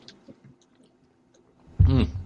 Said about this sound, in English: I had to take another sip because I wasn't quite ready. This is more of that citrusy fruitiness.